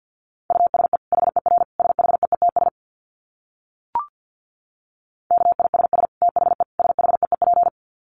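Fast Morse code at about 50 words per minute: a single steady-pitched tone keyed in quick dits and dahs, sent in two bursts separated by a pause with one brief click.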